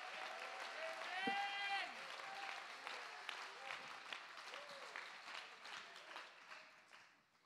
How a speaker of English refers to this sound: Clap your hands. Lift your voice. Give him praise. Shout. Worship. Give him glory.